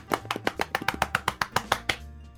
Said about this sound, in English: I practice body percussion on myself. When it's alone, when it's in your room at nighttime, solo, by yourself, body well, percussion, just that slapping sound.